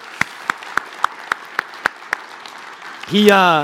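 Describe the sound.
Audience applause for a guest at an evening Christmas gathering: about eight evenly spaced, crisp claps at a steady rhythm, moderately loud, before a voice starts talking right at the end.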